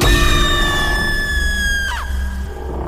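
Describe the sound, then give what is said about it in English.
A woman's piercing, unearthly scream holds a high, strained pitch that slowly sags, then cracks and drops abruptly near the end, loud over a low rumbling background. “A scream that was not hers exploded from her lips.”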